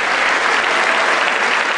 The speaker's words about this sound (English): Yeah, wait for the, you gotta wait for them to clap, Joe.